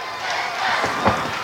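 A large arena crowd at a wrestling match roars and chants "Let's go, Dustin" for wrestler Dustin Rhodes, a dense, loud wall of voices that stays steady throughout with a brief swell near the end.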